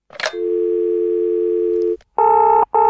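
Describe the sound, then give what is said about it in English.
A telephone line: a click, a steady dial tone for about two seconds, then the ringing tone of an outgoing call in two close bursts. It is loud and clear, with no voices. “So we should phone someone up who knows about that.”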